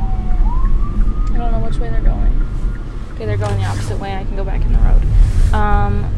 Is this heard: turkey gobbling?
no